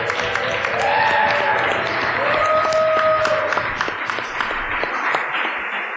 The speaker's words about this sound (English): Okay, we're going to do some Consumed Live. Thank you for coming. Since we're on recording here, will everybody just maybe do a little whoop, little audience applause for a second so I can hear on the recording?